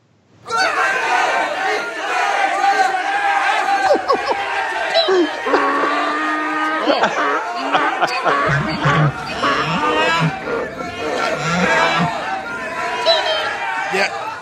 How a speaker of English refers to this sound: That is an unruly crowd there. That is an unruly crowd.